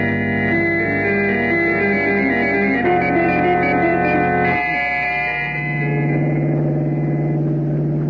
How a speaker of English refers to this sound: We fly to Helena, Montana, hire a car there, and drive the rest of the way.